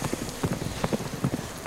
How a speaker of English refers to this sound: As you're all kind of sorting yourselves and readying yourselves, amongst these hoofbeats echoing around and the shrill neighing, you start hearing the clash of blades and the sound of swords slicing flesh.